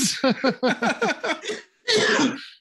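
A person coughs in a rapid fit of seven or eight close, loud hacks, pauses briefly, then lets out one longer, harsh, raspy cough.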